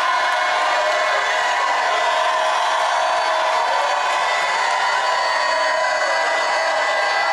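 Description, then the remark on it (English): An audience lifts hands and voices to God in a shout of victory, a dense, sustained roar of many voices with cheers and whoops rising through it, loud and steady for several seconds without any single speaker standing out. “Now, if that's you, with one voice, one heart, and one soul, lift your hands and your voices to God and let heaven hear a greater shout of victory ahead of time.”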